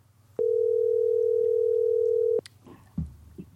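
A steady, loud telephone dial tone holds for about two seconds, then cuts off abruptly, followed by faint clicks and soft handling noises as a call to a friend is placed from a car.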